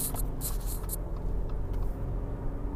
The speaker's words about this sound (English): Is it just because... Is this the City of Commerce? There's just like a lot of fucking trucks in here? There's trucks on like every fucking street. It's ridiculous.